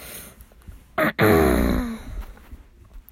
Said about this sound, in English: Clearing my throat.